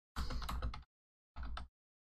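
Two quick bursts of clattering keystrokes on a computer keyboard, fairly loud, with a short pause between them and no voices, as someone types to look something up.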